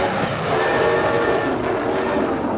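A train rushes along with a loud, steady roar and rattle, while a sustained horn tone sounds over the rumble throughout the short stretch.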